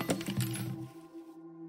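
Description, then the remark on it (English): A nail and a letter fall from a wall and clatter onto a hard floor in a quick burst of bounces, leaving a bright ringing tone that fades away over about a second. No voices. “She attempted again, placing the nail back in the wall and hanging the letter, but they both fell, clattering to the floor.”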